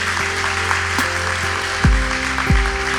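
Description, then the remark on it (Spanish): An audience applauds steadily for Jesus, a dense wash of clapping over a low sustained hum, with two deep booming thumps sweeping downward near the end. “Dar un aplauso a Jesús.”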